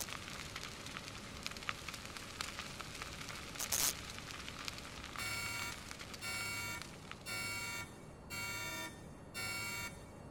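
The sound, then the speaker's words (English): A harsh electronic alarm on a data pad blares in five repeated pulses, each about a second long with short gaps, over a crackling, hissing background like sparks or static. “As that happens, you hear the alarm going off on the data pad again, and you watch as the lights overhead flash red”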